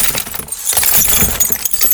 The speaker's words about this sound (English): And pound against the window. It shattered.